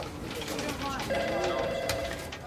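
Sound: cell phone ringing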